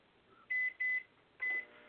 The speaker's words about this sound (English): Uh-oh. Something is getting microwaved. Is that one of the microwaves with the spy camera in it? Probably.